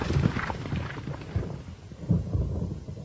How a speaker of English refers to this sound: At a gallop, the troop rode forward, some towards me, others following the wolf as it disappeared amongst the snow-clad cypresses.